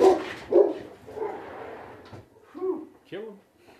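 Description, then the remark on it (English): Dogs barking: a few sharp, loud barks at the start, then a couple of higher, whiny yelps toward the end, with a quieter rustling stretch in between. “Dogs are out.”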